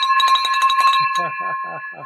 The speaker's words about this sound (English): Ring the bell.